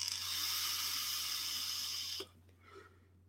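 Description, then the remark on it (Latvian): A steady, airy hiss of vapor being exhaled from a vape pen runs for about two seconds, then cuts off abruptly, leaving a low hum and a couple of soft, brief sounds. “Nē, šeit man ir tvaiks.”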